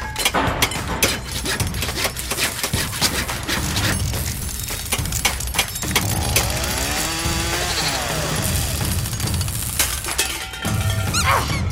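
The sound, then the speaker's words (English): Loud hammering in quick, irregular blows, mixed with metallic clanks and clinks and a buzzing power-tool whine, as a synesthesia machine resembling a human-sized kaleidoscope is assembled. There is no talking. “I need the hammer.”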